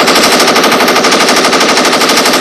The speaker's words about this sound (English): Let's get it right. Let's get them gun sounds.